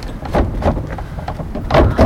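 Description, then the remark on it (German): The thin wooden sliding door of a small pink wooden hut with a plastic window and pitched roof is pushed open, with several short scraping, rumbling slides and light knocks over about two seconds, fairly loud, with no one talking. “Ich glaube, die Tür funktioniert tatsächlich auch.”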